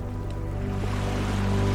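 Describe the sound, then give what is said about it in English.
A steady, continuous wash of ocean surf with no distinct breaking waves, holding an even loudness throughout, with a low droning hum underneath. “It's just you and me and the waves and the sun and the birds.”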